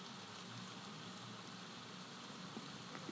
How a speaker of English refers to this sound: That's the sound of rain coming down in New Jersey, on the east coast of the United States. A little bit different from cork rain? I don't know.